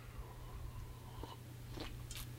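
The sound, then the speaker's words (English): A few quiet slurping sips from a cup of coffee, short wet bursts spaced about half a second apart over a low steady hum, with no one talking. “Give me a moment. I'm going to have a cup of coffee.”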